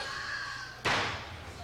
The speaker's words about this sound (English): Landed on the lower back first. That's such a dead ring sound. So you know it's stiff. The fucking boxing ring. It doesn't even look like it has a mat on it, really. It looks like they're just landing on plywood.